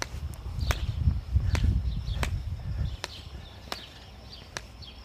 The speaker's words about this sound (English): I'm walking down the road and I'm trying to avoid a lot of cow poop. I think it's cow poop.